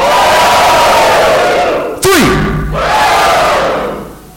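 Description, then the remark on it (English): A large live audience roars with sustained cheering and screaming as ticket numbers are called out in a prize drawing, briefly interrupted by a sharp thud before the loud, dense yelling swells back up. “So I want everyone to make some noise per number we get yelled out that you have, and then we're going to whittle it down to the last person screaming because they have the last number.”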